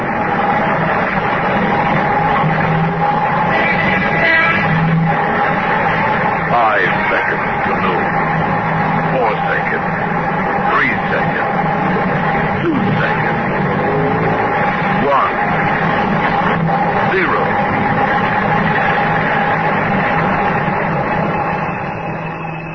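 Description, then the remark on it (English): A loud, steady roar of street traffic just before noon, with engines rumbling and droning continuously, trucks and cars churning together, and indistinct voices mixed faintly into the din. “At that same moment, the enormous commerce of our briskly modern world roared and thundered in the street.”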